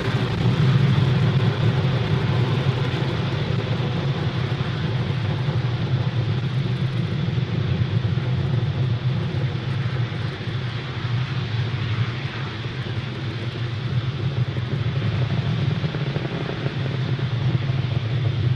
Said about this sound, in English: Falcon 9 has successfully lifted off from Pad 40 at Cape Canaveral Air Force Station, carrying our Starlink payloads into orbit.